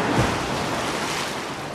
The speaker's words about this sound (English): Whoa, kiddo, that's a big splash.